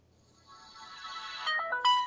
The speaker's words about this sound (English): There's my startup music. You know, I got that music too, but mine was, I also got the T-Mobile audio logo. Huh. I actually did get both. Okay. So we're powering up now.